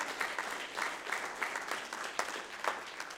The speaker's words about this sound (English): Clap your hands unto the Lord if you believe that.